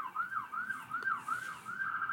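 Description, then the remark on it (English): An emergency vehicle siren outside wails in a fast, repeating up-and-down yelp, moderately quiet, with no voices over it. “Seems like there are always sirens when I record.”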